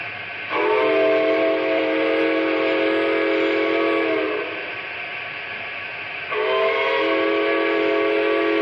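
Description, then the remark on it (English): A loud steam train whistle blows two long, steady blasts, the first lasting about four seconds, with a short dip between them and no voices. “Well, it seemed like to me if we was going to run this train, we might as well run it right, so I fixed the whistle.”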